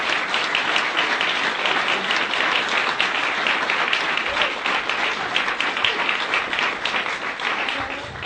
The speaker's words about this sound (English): Can I ask the worship team to come up? You can give the Lord a round of applause.